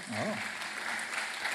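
An audience breaks into steady, dense applause, a continuous wash of many hands clapping at even loudness, with a brief vocal exclamation at the very start.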